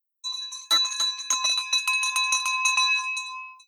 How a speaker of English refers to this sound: We've got the victory bell ringing out for Vamsi and VJ